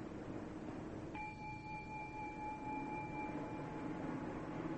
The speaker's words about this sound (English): So this initial application to the meditation subject and the sustained application to the meditation subject are very often compared to hitting the gong and then having the sound of the gong continue like this.